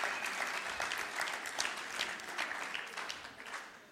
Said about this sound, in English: So give them a clap. Well done, truly.